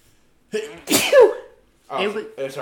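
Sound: a person sneezing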